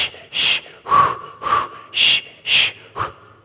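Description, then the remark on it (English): A voice imitates sharp gasping breaths of a woman in labor during a contraction, about seven quick, breathy inhales and exhales in a steady rhythm, loud, with a few carrying a faint whistling edge. “She wasn't breathing. She was holding her breath.”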